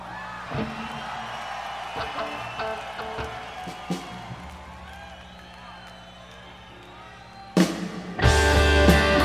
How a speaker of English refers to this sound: But this is what, listen to the crowd. They all sound the same.